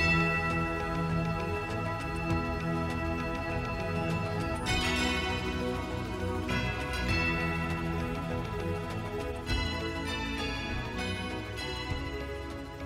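Tubular bells ring out over a dense, sustained musical backdrop, with a few bright struck notes whose metallic overtones shimmer and slowly decay. No one speaks.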